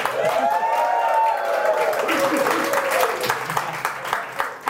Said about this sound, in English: Hey everybody, this is Gary Vaynerchuk, and this is the Ask Gary V Show live in our London office at VaynerMedia. We have an audience in front of us. You guys can clap real quick.